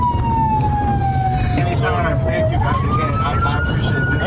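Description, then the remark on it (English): A police car siren wails steadily, its pitch sliding down and then sweeping back up, heard from inside the moving police car over a constant engine rumble, with faint voices at times. “Here's a little bit of the video that ended up online where Hulk Hogan's riding in this cop car. Here we go. Oh, brother, my Uber's got a siren.”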